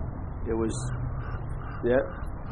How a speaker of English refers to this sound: The crow is telling me. It was actually just singing.